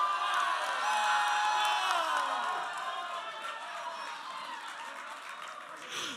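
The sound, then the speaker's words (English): An audience cheers and shouts loudly to vote in a poll, with overlapping high-pitched voices and whoops, a steady roar that eases off slightly after the first few seconds. “You can only cheer for one person.”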